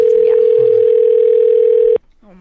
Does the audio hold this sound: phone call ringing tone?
yes